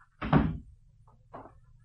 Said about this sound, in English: Close the door.